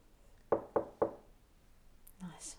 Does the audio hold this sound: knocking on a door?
yes